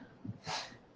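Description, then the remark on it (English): A single quick sneeze: a brief low catch of breath followed by a soft, hissy burst of air lasting about a quarter second, fairly quiet, with no talking. “Bless you.”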